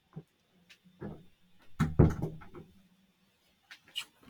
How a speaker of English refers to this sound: Had a door open up on me.